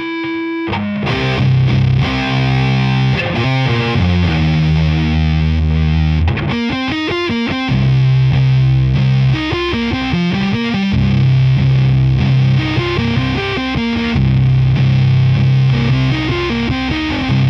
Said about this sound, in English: That is just such a rad and iconic fuzz pedal. I actually have that running through so that it can be pumped through both amps. Here, let me play that real quick, just on its own. It already sounds like a jet plane's coming in.